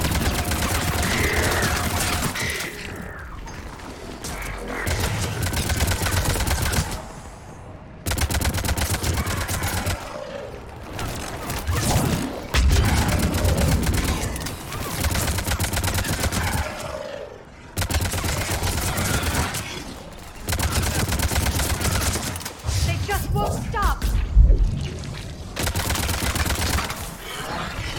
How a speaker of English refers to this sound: We're shooting up the spore pods, and I'm not entirely sure.